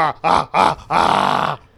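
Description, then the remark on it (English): A man imitates an ape with a series of grunts: a short low bark, two quick guttural grunts, then one longer, drawn-out throaty grunt, loud and harsh. “I sound more like an ape.”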